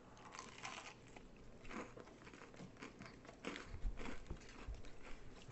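Crunchy bites and chewing, a series of crisp crackling bursts with short pauses, as someone bites into a piece of spicy KFC fried chicken. No talking.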